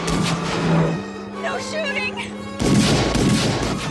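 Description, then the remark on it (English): Loud, booming gunfire in a movie erupts in dense bursts at the start and again near the end, with voices shouting briefly in the calmer middle stretch over a steady low hum. “Like, all the guns sound like cannons.”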